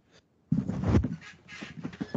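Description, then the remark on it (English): A bed creaks and squeaks under shifting weight as someone gets onto it, with thick rustling and a few short, high-pitched squeals after a brief quiet start. No one speaks. “Let me get on the bed in a way so it doesn't make any noise anymore. Like a squeak-proof bed, Jesus.”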